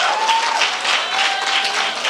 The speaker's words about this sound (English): Well, if you got anything out of the word of God, can you give God a hand clap of praise?